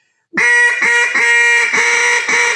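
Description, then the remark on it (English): A duck call blows a loud, raspy hail with the throat held open: about five long, harsh quacks run together in a steady rolling series, buzzy and rich, with no voices over it. “The opening your throat, more you open your throat, the raspier it's going to be.”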